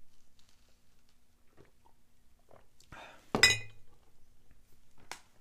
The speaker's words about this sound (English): Yeah, I need a swig of coffee.